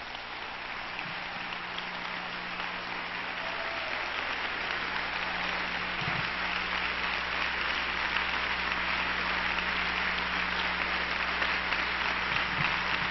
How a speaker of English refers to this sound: If you believe it, preacher, clap your hands to Jesus.